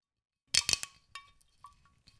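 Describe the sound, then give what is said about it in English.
A whiskey bottle's seal cracks open: a quick burst of three sharp crackling snaps, followed by a few fainter clicks and glassy ticks trailing off, with no voices. “Okay, it's a crack one, not a pop.”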